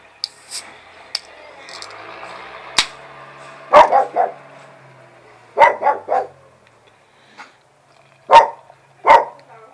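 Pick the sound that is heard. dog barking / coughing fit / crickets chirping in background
dog barking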